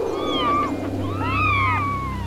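A litter of tiny kittens inside a sack mew at once, their thin, high cries overlapping in a plaintive chorus that sounds slightly muffled, with a steady low hum underneath and no talking.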